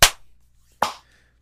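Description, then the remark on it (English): Two sharp, loud hand claps, the second following just under a second after the first, each a crisp snap that fades quickly, with no talking. “I just clapped.”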